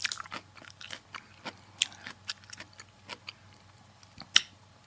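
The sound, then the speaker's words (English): Crisp crunching of someone chewing a crunchy treat, with irregular sharp bites and crackles spread across a few seconds and one louder snap near the end; no talking. “You should have ate this. That was a good one. This crunchy ass treat.”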